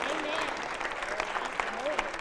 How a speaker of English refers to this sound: Angels are your ministers now. Oh, you ought to clap long in that because they the one who serve you.